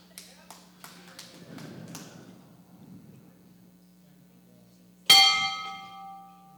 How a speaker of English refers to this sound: Ah! Why are you ringing the bell? But how prophetic is that? Ah! Don't ring the bell.